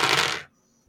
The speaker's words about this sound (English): So I'll just go for the straight six dice.